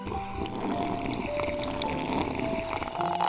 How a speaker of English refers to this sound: We begin today's meditation with a few sipping exercises to remind us a little treat can go a long way. So pick up your McCafe iced coffees, close your eyes, and deep sip in.